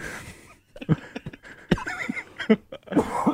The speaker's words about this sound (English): Okay, the trouble with laughing is it makes me cough.